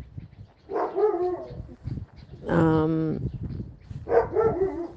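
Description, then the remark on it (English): A dog barks three times at steady intervals while chasing a person, each bark drawn-out, tonal and yelping, loud over a low rumbling background with no talking. “You hear him now chasing me.”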